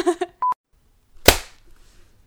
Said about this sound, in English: Okay, I think that was a good clap. I think it was an excellent clap. Alrighty. The clap to end all claps.